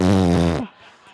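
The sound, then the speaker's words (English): A single loud, buzzy fart-like blast lasting about half a second, holding a steady low pitch before sagging downward at the end, then trailing into faint breathy noise. “So I let out the rest of that fart.”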